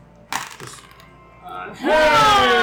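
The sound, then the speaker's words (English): A quick, sharp clatter of dice tumbling across a table as an attack roll is rerolled during a tabletop game, a few light rattling knocks, followed by a person starting to speak. “Take an inspiration, because you're down. Reroll one of those.”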